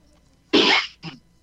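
A single loud, sharp sneeze bursts out, followed a moment later by a shorter, softer breathy sound, with no talking around it.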